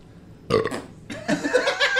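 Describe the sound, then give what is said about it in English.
Two loud belches in quick succession: a short one followed by a longer, drawn-out rumbling burp, with no talking in between. “Did you shit your pants and you burp at the same time?”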